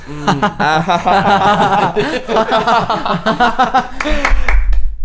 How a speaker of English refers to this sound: Oh, clap too early.